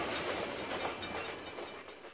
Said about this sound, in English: Suddenly, there's some train tracks, so another thing is, maybe a minute later, there's a train going the exact opposite direction.